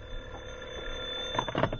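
A telephone rings with a short, rattling electric bell burst that starts late and cuts off, an incoming call from a sponsor's secretary, heard over a steady low background hum with no talking.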